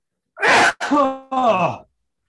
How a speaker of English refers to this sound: I got full body sneezes, full body contractions. Disgusting.